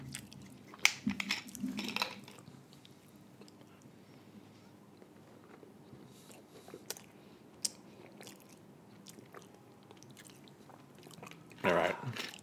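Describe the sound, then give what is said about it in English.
Crunchy chewing and biting of cookies, with sharp bursts early on, softer mastication through the middle and a final loud crunch near the end, no one speaking. “Yeah, they did good cookies down the road.”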